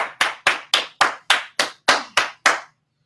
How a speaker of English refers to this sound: everybody give a round of applause